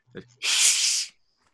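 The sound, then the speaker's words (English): A mean, old-looking cat in the left-hand corner of a room gives a sharp, breathy hiss, loud, lasting under a second and cutting off abruptly, preceded by a brief low vocal sound. “The only thing that you see when you give a quick glance is that off to your left, in the kind of tucked away in the left-hand corner of the room, is this mean old-looking cat that sat there glaring at you. And when you see it, he just hisses.”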